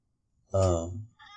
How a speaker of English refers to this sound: Oh, my God, cat, get away.